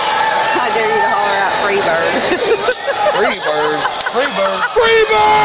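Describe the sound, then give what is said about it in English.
A loud concert crowd yells a song title and cheers, many voices shouting over one another in a dense, continuous roar with rising whoops throughout. “Yeah, you always yell it out at a concert.”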